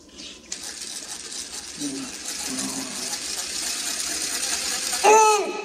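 A power drill spins a corn cob as a singer tries a life hack of eating corn on a power drill, with a steady, harsh whirring grind that runs for several seconds, ending in a brief louder burst with a high, wavering squeal.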